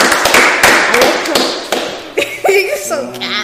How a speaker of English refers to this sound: Let's clap for them.